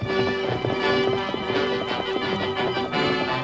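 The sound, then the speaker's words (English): Rapid, rhythmic hoofbeats of a stallion galloping across the plains, loud, pounding steadily under a sustained musical tone with no talking. “No hoofs had ever beat the plains like those thundering hoofs of the great horse Silver”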